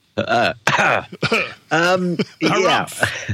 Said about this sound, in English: Excuse me? No, I had this cough.